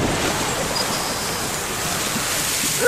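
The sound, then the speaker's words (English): A steady, loud rush of spraying water and hissing steam from an erupting geyser, as water turning to steam is pushed rapidly out of the opening high into the air, a dense continuous roar with no pauses and no voices, swelling slightly at the very end. “Well, there's not enough room down there for water and all that steam, so it all gets pushed rapidly out the opening of the geyser, high into the air.”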